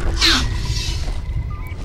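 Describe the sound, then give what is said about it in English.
A dinosaur raptor roar from a teaser for the Jurassic World animated series: a loud, shrill screeching burst near the start that trails into a rasping growl over a steady low rumble, with no talking. “Here comes a raptor.”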